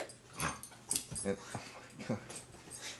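A dog rolling around excitedly whimpers and whines in short, excited bursts, fairly quiet, with scattered rustling and shuffling noises between the cries.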